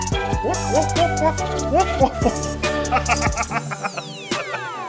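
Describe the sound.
A person imitates a dog, letting out a string of short, yelping barks at an irregular rhythm, with a steady droning tone underneath and a few whistling sweeps near the end.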